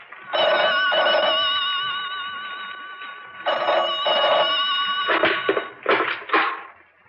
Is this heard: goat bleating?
no